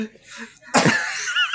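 After a quiet moment, someone lets out a sudden, harsh cough into a microphone they thought was muted; it trails into rough, breathy rasping until the end.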